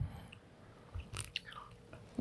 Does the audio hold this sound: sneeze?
no